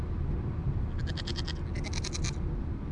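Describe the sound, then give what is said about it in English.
Three goats bleat in two quick, wavering bursts, the second a bit louder, over a steady low rumble of background noise. No one speaks. “We got 3 goats, in fact.”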